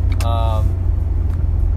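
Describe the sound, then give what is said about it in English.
Steady, loud low rumble of a car on the road during a commute as it drives past a truck it had been stuck behind, with a short high harmonic whine near the start over the continuous engine and road noise. “Although I am stuck behind this truck. Ooh, I can get around, finally.”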